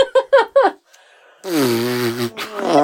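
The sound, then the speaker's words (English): A few quick bursts lead into a loud, drawn-out squelching arm fart made by hand that sags slightly in pitch, followed by another brief sputter. “There are so few opportunities in my life to arm fart.”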